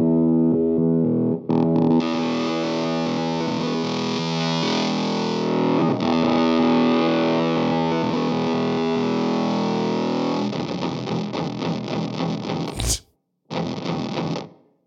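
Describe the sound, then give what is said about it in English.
A heavily distorted electric guitar played through a fuzz pedal, thick sustained chords ringing out, then choppy rhythmic strums, a brief silent gap, and a final burst of fuzzy playing. “We love the dirt over here,”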